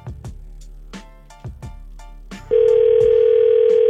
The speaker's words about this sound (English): And again, New Tour Tuesday right around the corner as you're listening to a phone ring on the radio, which I'm sure is wild.